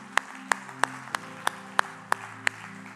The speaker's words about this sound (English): Well, let's clap our hands to Jesus right now. If you love what you feel in the house of the Lord.